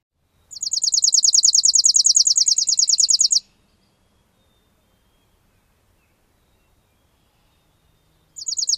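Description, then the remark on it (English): A chipping sparrow sings a rapid, dry, even trill of many identical high notes for about three seconds, loud, then falls silent before another trill begins at the end. “Again, first the chipping, then the junco.”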